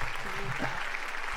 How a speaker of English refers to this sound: It's a crowd of applause. Yay! Good game. Good game.